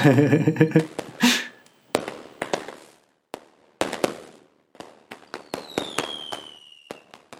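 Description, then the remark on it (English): A fireworks clip passed through a buzzing, metallic Dalek voice filter: a run of sharp, loud bangs and crackling bursts, with a thin whistling streak sliding downward near the end. No voices. “I wonder what our fireworks clip will sound like when I drop it into my Dalek voice filter.”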